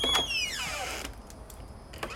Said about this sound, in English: New sound effect, the squeaky door.